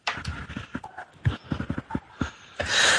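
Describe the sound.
A person imitates a pig, making a rapid series of loud grunting snorts with a few thin squealing notes, ending in a harsh breathy blast.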